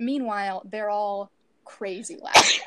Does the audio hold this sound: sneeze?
yes